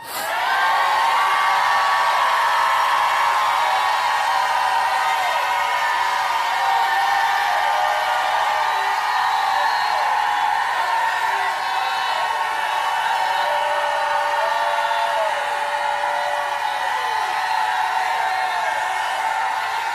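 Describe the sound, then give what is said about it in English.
A large crowd at a religious service shouts, cheers and whoops continuously in a loud, sustained roar in response to a call to shout, many voices overlapping with high-pitched yells rising and falling throughout, with no break or quiet moment. “If you believe divine, undisputed, unstoppable, ever living success is in your life now, shout like you've never shouted.”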